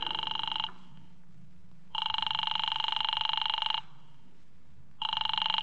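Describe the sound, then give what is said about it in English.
A telephone rings repeatedly with no answer, long steady buzzing rings separated by pauses, fairly loud over a low background hum, as a call to Diamond's office goes unanswered. “His office don't answer.”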